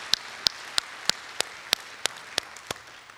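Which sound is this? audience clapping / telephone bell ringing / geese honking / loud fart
audience clapping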